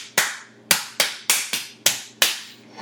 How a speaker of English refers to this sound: Look at those claps.